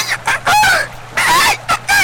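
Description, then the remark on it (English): A person imitates a bird, trying to shout 'behind you' in bird language, with a string of loud, squawking calls in short bursts, sounding somewhat like a clucking, crowing chicken. “Give me a nature check to try and differentiate this bird call from all of the other bird calls that you've heard”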